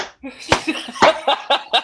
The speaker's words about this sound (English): Just to let the listeners know, I'm not clapping for myself. Jabberhammer is clapping. No, I'm not a peasant. I do not clap. I have a machine clap for me.